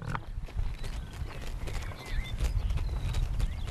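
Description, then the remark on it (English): Alpacas munching food: a steady stream of irregular, crisp crunching and chomping sounds, with faint birdlike chirps in the background and no voices. “Such a lovely noise. Stereo munching.”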